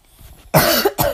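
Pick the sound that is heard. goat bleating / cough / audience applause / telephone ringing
cough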